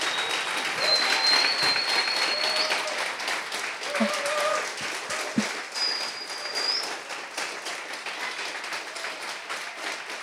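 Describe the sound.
A standing audience claps steadily to honor a couple, a dense, even wash of applause lasting the whole stretch, with a few scattered whoops and faint voices rising above it.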